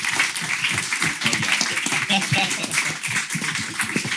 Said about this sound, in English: Can we give a round of applause for like our guests and our panel?